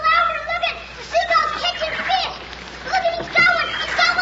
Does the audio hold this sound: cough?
no